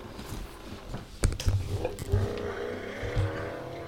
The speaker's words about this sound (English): Okay, so you get on your bike and you gun the engine. Wait. I gun my engine.